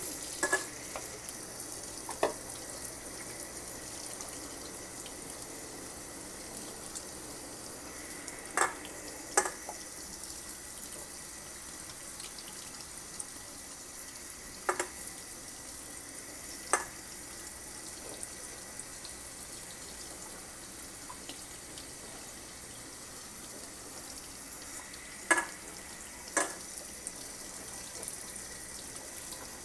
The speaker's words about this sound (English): I'm sorry, let me focus on this because apparently it takes a lot of my brain power to fill these cokes with water. And I just swish and pour it out. Easy peasy, lemon squeezy.